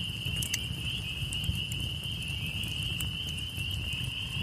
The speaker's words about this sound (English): As you approach, you hear the loud crackling of the flames, and you are mesmerized by its hypnotic orange, blue, and white glow.